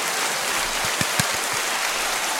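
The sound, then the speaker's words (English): A handful of quick, soft hand claps, around four or five in a short burst, sitting under a steady hiss of background noise. “That deserves claps, bro.”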